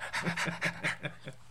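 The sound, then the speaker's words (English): A person imitates a dog panting with its tongue hanging out, with rapid, rhythmic huffing breaths, about six quick pants in a row, moderately loud, with no talking. “I'll hang my tongue out like I'm the dog.”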